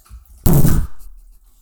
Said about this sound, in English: Sorry, I drink water really loud.